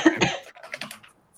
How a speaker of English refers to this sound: So apologies for my cough.